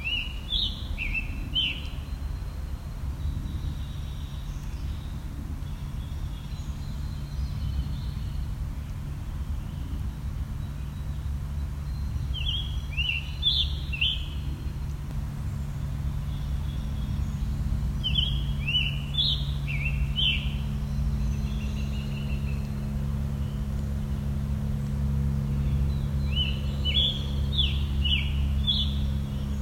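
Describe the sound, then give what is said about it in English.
Hoarse, robin-like bird song arrives in four short, scratchy phrases of quick high notes, separated by pauses, over a constant low rumble. “So think of how a robin sounds, then give it a sore throat.”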